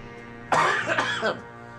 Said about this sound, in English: Still got my COVID cough, even though I'm officially negative.